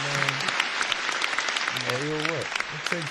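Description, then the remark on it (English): A crowd claps steadily in dense, continuous applause, with voices whooping and shouting over it a few times, loud throughout. “You gotta give him applause. Round of applause.”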